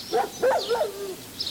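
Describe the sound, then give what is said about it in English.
A dog lets out a short, wavering howl that rises and then slides downward in pitch, with no voices around it. “Nice dog.”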